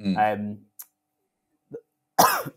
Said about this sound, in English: Sorry, I have had a cough for like 8 months since I had COVID. So apologies if I do cough.